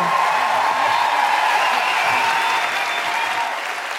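Sustained applause from a crowd, a dense, steady patter of many hands clapping at a consistent loudness for about four seconds, tapering only slightly at the end.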